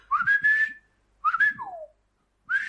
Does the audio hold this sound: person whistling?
yes